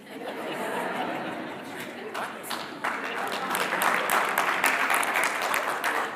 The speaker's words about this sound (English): Only parents are clapping right now. That's it. Only parents, man.